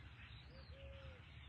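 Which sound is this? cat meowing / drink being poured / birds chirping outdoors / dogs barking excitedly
birds chirping outdoors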